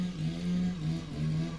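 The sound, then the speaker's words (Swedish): A motorcycle engine drones loudly and steadily, its low buzzing pitch wavering slightly as it passes, with no voices over it. “Oh shit, the motorcycle walkie-talkie men are coming for you!”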